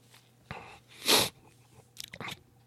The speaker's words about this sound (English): Like, besides the fact that I need to fucking sneeze really bad.